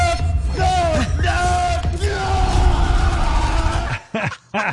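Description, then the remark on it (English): A man yells and bellows in long, strained cries whose pitch rises and falls as a massive unseen ocean fish pulls his rod and reel out of his hands, over a constant rumbling background noise, finishing with a couple of short, abrupt shouts. “This is a guy getting his rod and reel pulled out of his hands by a massive unseen ocean fish.”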